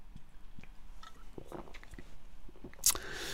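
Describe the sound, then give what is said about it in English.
Wet mouth sounds of someone sipping beer: soft clicks and gulps, then a brief sharp fizzy hiss near the end. No one speaks. “I'm going to have a quick sip of beer, guys.”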